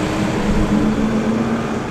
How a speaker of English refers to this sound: Now, a garbage truck just drove up by us, and that I have this very fond memory of a garbage truck.